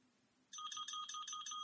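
A service desk bell sound from an iPhone app showing a picture of a service bell on a desk: a bright, ringing metallic tone struck about six times in quick, even succession after a quiet moment, loud and with no talking over it.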